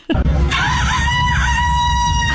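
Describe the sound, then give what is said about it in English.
A person's voice imitates a rooster crowing: one loud, sustained, strained call with a rising and wavering pitch, held for about two seconds over a low rumble. “That was pretty, that's a human right there. That's crazy. That sounds like a rooster.”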